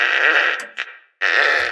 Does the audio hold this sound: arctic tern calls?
no